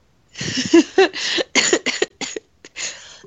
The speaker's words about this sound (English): That made me cough.